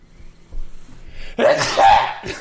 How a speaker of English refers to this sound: And I have to sneeze.